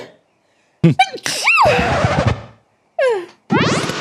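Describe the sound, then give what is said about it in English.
A loud fit of violent sneezing: a long, strained first sneeze with a rising wail, followed by two more sharp, convulsive bursts in quick succession. “It was more like an exorcism than a sneeze.”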